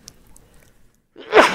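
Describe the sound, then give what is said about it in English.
A single sharp, loud sneeze bursts out after a second of near silence, with a brief noisy spray trailing off at the end. “Bless you. Excuse me.”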